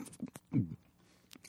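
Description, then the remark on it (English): Wet mouth sounds of someone eating pudding with a full mouth: a few smacks and clicks, then a brief muffled, garbled vocalization, then quiet. “You'll be given a forum to express your opinions however you like, as long as there's pudding in your mouth.”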